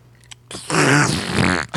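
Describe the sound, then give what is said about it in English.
A single loud, drawn-out fart, raspy, sputtering for about a second after a couple of faint clicks, with no talking over it. “How's that fart drink?”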